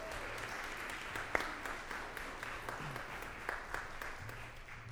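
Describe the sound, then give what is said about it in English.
A roomful of people clap steadily together for the new bell choir director, a dense, sustained patter of many hands filling the space at moderate volume with a few sharper claps standing out. “A round of applause.”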